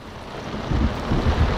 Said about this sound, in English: But then the winds had really picked up, and the ship was buffeted to and fro as great waves rocked it and the rains came down.